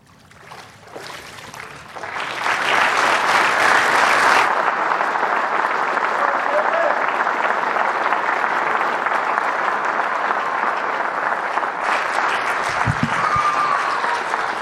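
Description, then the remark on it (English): An audience bursts into sustained applause at the end of a baptism, swelling within a couple of seconds and holding steady as a dense wash of clapping, with a few faint voices mixed in. “Because I know why we clap at the end of each baptism is because we're giving glory to the Lord.”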